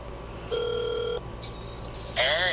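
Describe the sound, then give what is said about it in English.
A phone call rings out over the line: one steady, buzzy ringback tone lasting under a second, followed by quieter faint beeps and then a sudden louder burst as the line connects. “So let's see if we can't get him on the phone.”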